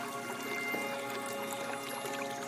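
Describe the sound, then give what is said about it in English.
Steady water pouring and bubbling from a six-foot rose quartz fountain in the corner of a sunny spa room, continuous and moderately quiet, with a faint tonal hum in the background and no voices. “There are lots of lush green plants and a beautiful 6-foot rose quartz fountain bubbling in a corner.”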